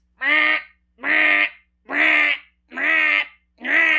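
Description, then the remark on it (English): A harsh, blaring alarm-like honk from outside, a fantasy-world equivalent of a car alarm that wakes sleepers, repeats five times in a steady rhythm, each loud blast lasting about half a second with brief silences between, unaccompanied by any talking. “And then there is this horrible noise from outside. The Faerun equivalent of a car alarm, just this.”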